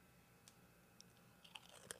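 Crisp crunching on a ridged, Montreal steak-seasoned potato chip, with several sharp bites and crackles that cluster more densely toward the end. No talking.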